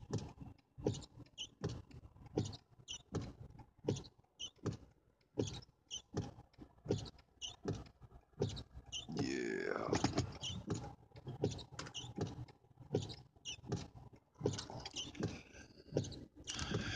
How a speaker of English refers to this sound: I'm tired of hearing the windshield wipers.